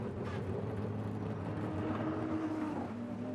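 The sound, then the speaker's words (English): The V8 engine of the 01 Cadillac race car driven by Sebastian Bourdais idles and revs steadily in the runoff at turn six, a deep rumbling drone with harmonic whine, continuous throughout, with no voices. “Now I hear a V8 running.”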